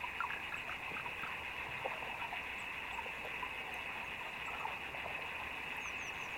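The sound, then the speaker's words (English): A dense chorus of tiny underwater taps and clicks made by underwater beetles, irregular and overlapping, over a steady high hiss. Faint and continuous throughout, with no voices. “And then if you listened even harder, you could suddenly become aware of a forest of these tapping sounds.”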